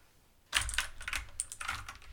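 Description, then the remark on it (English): A burst of rapid, irregular clacking on computer keyboard keys begins after a short quiet moment, fairly loud, as a child bangs and mashes the keys haphazardly, with no voices. “You cannot play with my keyboard.”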